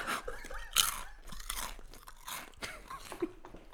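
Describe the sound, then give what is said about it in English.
Loud, crisp crunching of chips being chewed, with repeated sharp bursts of crackling at an irregular chewing rhythm over about four seconds, and no talking. “Yeah, it means you can eat chips on it.”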